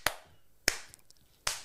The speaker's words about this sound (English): So, chords and claps. I saw you doing that thing.